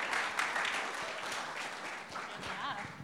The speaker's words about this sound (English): Let's give him a huge clap.